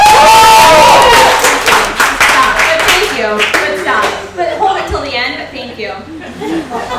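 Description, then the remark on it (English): Loud audience applause with dense clapping and some cheers and laughter for several seconds, tapering into scattered claps and murmuring toward the end. “A hold for your applause.”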